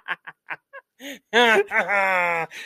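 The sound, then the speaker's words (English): A person imitates the Aflac insurance duck's quack: a few short, clipped quacking bursts, then two loud, drawn-out nasal squawks that end abruptly. “Could you imagine hitting the horse-sized Aflac duck with a car?”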